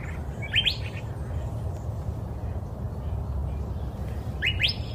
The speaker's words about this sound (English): I'm in Gilbert, Arizona, and we're listening to Curved Bill Thrasher this morning.